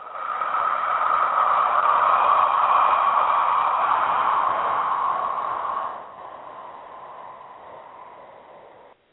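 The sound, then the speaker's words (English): A long ujjayi inhale, a steady hissing rush of breath through a narrowed throat that sounds like ocean surf, holding for about six seconds before dropping to a fainter breathy tail. No speech. “Let me just demonstrate quickly an inhale and exhale, and you'll see why it's called ocean breath. Here's the inhale.”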